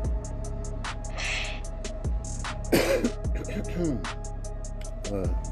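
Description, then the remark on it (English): Someone lets out a string of harsh, raspy coughs and throat-clearing bursts over several seconds after smoking a blunt, with a steady low rhythmic beat playing underneath. “that blunt cough.”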